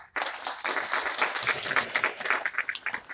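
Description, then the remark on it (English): A crowd breaks into sustained applause, many hands clapping in a dense, steady patter that stays fairly strong throughout, with no voices standing out. “So once again, if you would, please, a big round of applause for the”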